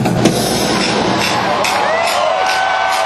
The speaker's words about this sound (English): Well, they got everybody clapping, and the sticks are clapping together. That's what you hear.